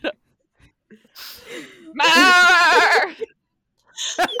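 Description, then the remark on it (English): A person imitates a goat with one loud, wavering bleat that sounds like the word "myrrh", lasting about a second, preceded and followed by a few faint breaths and short vocal sounds. “Because it sounded like you were saying myrrh as a goat, and that just makes sense.”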